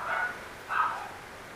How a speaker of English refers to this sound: Would you believe that that's a miniature schnauzer barking? One of them.